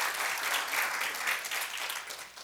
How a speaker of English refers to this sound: Let's give the Lord another round of applause for that beautiful worship.